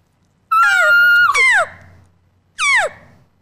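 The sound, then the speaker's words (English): A voice imitating an elk bugle on a diaphragm call: a long, shrill, whistling note that drops in pitch, followed a moment later by a shorter descending squeal. “Yeah, we're talking elk bugles.”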